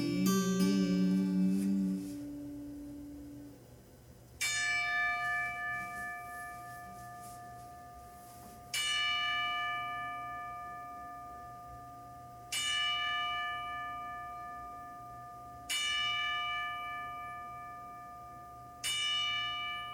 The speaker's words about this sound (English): Here's a 10-bell salute to my brothers that are gone away.